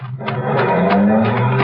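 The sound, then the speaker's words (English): A car, parked at the deep end of a gateway with two men climbing into it, revs hard and rises in pitch as it pulls away fast, with a rough scraping edge like tires slipping, loud for under two seconds. “All I know is that a car was parked at the deep end of the gateway and two men were just climbing into it.”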